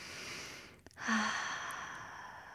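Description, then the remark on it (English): A slow, deep breath drawn in through the nose, a brief pause, then a long airy exhale that trails off. Fairly quiet, with no talking. “Did you breathe all the way into your belly?”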